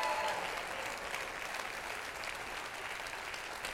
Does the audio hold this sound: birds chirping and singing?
no